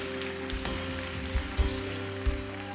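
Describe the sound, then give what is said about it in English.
A church audience, asked to say amen and clap their hands at the end of a prayer, claps in a dense, steady patter of applause, with a sustained low musical tone humming underneath and a few louder thumps poking through. “And everybody say amen and clap your hands all over the room today.”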